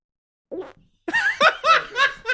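A brief, buzzy fart let out on air by a man sitting at a microphone sputters out, trailing off into a tiny blip, and after a short pause several people break into loud, bursting laughter that continues to the end.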